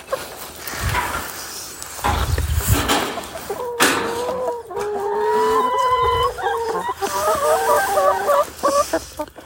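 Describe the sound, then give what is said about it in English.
Chickens cluck and squawk in a pen on an allotment, a lively overlapping chorus of rising and falling calls with some rustling and footsteps early on as someone enters the pen, no talking. “I'm now entering the chicken pen.”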